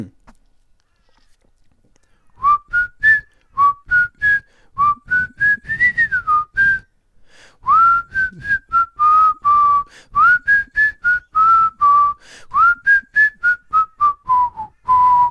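A person whistles a TV theme tune up close, a clear melodic line of short and sustained notes rising and falling, running for about thirteen seconds with a brief pause midway.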